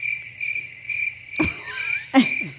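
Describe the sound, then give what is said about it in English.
Crickets chirp in a steady, pulsing drone, interrupted by a couple of short rustling or knocking sounds near the middle and end; no one speaks. “Nothing but crickets.”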